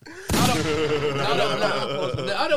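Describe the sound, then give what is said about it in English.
A loud, sharp gunshot sound effect cracks out near the start, then dense music with a voice carries on, with another brief hit punching through near the end. “That's a gunshot, yo.”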